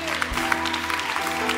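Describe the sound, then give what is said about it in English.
A church audience claps as praise during worship, a steady dense crackle of many hands with soft sharp peaks, over a low sustained hum of organ or keyboard tones. “Why do they clap so much around here?”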